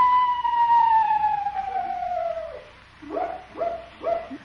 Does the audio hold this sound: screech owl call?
yes